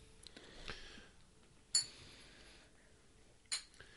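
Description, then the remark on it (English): Glasses clink together in a toast, two bright ringing taps about two seconds apart, soft against a quiet background with faint rustling. “To better times. Cheers.”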